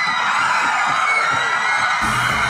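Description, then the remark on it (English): A large studio audience screams and shrieks with excitement as Oprah gives each of them a car, a loud, dense wall of high-pitched voices that holds steady for the whole stretch without pause. “Would they be screaming if Oprah had given them electric cars?”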